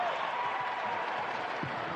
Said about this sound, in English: He's driving, going coast to coast. Jams it with a right hand. Grayson Allen brings the crowd to their feet with a cheer.